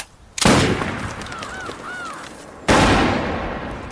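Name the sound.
gunshots fired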